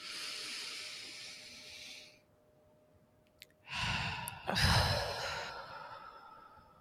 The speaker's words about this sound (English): So I'm just fanning all the cards over my heart, and let's just take a deep breath together to put our energy into the deck, breathing in.